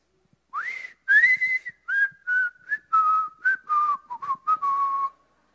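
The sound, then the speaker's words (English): A person whistles a short, clear melody in front of an audience, about ten separate notes that rise sharply at first and then step gradually downward, with brief gaps between them and no talking. “You know, one of those tunes that he would whistle is one of these.”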